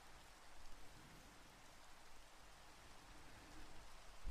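Steady rainfall hisses across a broad band, a dense, even wash of droplets with slight swells in intensity, no voices present.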